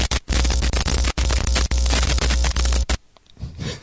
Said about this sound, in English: Hello? Hello? I'm sorry, I can't hear you because of all this static.